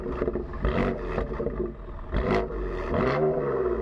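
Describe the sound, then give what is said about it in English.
A BMW M3 car engine revs hard several times in quick bursts, its throaty roar rising and falling with a mechanical whir underneath; no one speaks. “That is a BMW M3.”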